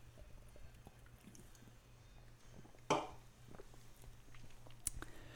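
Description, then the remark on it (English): Someone quietly sips a Mountain Dew soda, with soft liquid slurps and a sharp click or two from the can over a low, steady background hum. “So let me take a sip of Mountain Dew here.”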